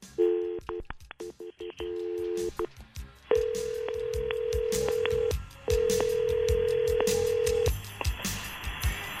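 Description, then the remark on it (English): A rapid series of touch-tone beeps dials a number for a three-way call on the Mojo in the Morning radio show, followed by two long, steady ringback tones with a short gap between them, heard clearly over a phone line with no one speaking. “This morning here, we're going to make a phone call to your boyfriend and his best friend at the same time and see how they talk to each other.”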